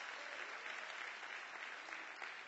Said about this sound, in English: And if you would, just give the Lord a hand clap. Just last week.